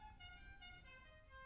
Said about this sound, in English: creepy van again. Was that what it was? A Godfather horn? Oh my gosh.